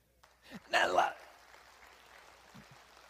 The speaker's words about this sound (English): I say that to have a Jesus pep rally, but praise God that you're clapping now and you're with me. That's awesome.